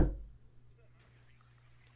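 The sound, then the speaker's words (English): A single dull, solid knock at the very start, fading quickly into quiet with a faint low hum and no talking. “Was that knocking?”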